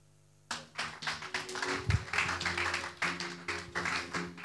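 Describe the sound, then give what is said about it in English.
After a brief silence, a church audience bursts into steady, dense hand clapping, many sharp claps blending into a rhythmic wash, with a low sustained hum running underneath. “Clap your hands, church.”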